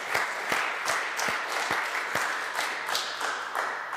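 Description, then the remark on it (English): A crowd applauds steadily for a hospital, built with help from mission trips, that now serves over 200,000 people a year; many hands clap at once in a dense, even patter, with a few sharper individual claps standing out at irregular moments. No one speaks. “Yeah, that's what we're clapping for.”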